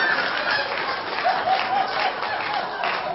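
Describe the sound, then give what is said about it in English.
A crowd applauds steadily for a few seconds, a dense, even wash of many hands clapping at once with no pauses, plus a few faint higher whoops rising above it. “What are you all clapping for?”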